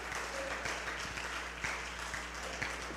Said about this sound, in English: Oh, clap your hands and shout to the Lord right now.